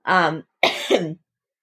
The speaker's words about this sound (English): I am currently sorry, I'm still sick. Sorry if everybody here has been coughing. I'm still sick. I've been sick for like a whole month.